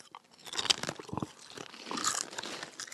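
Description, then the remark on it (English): Loud, crisp crunching of thick Kettle Brand kettle-cooked potato chips being chewed, a steady run of sharp, brittle cracks and bites with no talking. “This is what I like about Kettle Brand chips, but it can also drive you crazy.”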